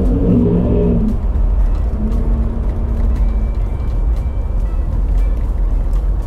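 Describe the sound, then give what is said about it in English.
Steady interior car noise while driving: a constant low engine drone and road rumble, with a brief harmonic engine tone early on and faint clicks, loud throughout. “If I wasn't driving and recording, I would take my phone and take a picture of it.”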